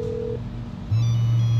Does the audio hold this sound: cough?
no